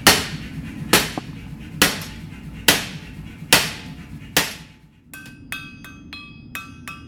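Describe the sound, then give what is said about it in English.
A hammer strikes a glowing hot carbon steel rod by hand, shaping it into a pan handle, in heavy blows at an even pace, then shifts to lighter, quicker taps that ring brightly like an anvil. No one speaks. “Once it glows, he picks up a hammer and starts to shape it by hand.”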